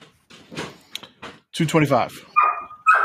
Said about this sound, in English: and the dog barking is free.